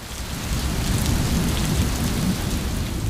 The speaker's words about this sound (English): John walked into the kitchen and discovered that the window was, in fact, open, and it began to drizzle.